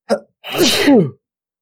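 One loud sneeze: a quick sharp intake of breath, a brief pause, then a forceful, breathy burst that trails off with a falling voiced tone.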